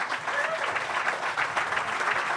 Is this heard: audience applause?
yes